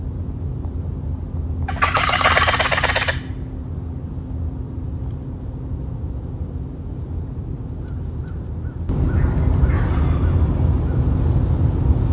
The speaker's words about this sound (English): It's just a quick little clip of me gobbling on my box call, and then you're going to hear a crow, and then you're going to hear two fall gobbles. So here's that little clip while they're on the roost.